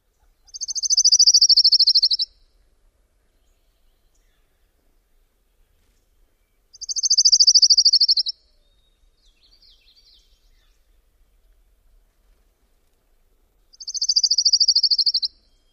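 Three separate songs of an orange-crowned warbler, each a quick, high trill about two seconds long, spaced several seconds apart and heard clearly against a quiet background with no talking.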